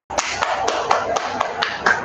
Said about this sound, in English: That was an applause. Literally the other side of the world.